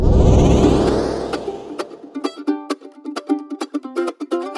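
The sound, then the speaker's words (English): A whooshing, engine-like roar builds and fades, giving way to a quick run of bright, rhythmic chiming clicks and bleeps, a playful sci-fi effect of the Wayback Machine time machine starting up to go back to the 1800s. “Engaging Wayback Machine.”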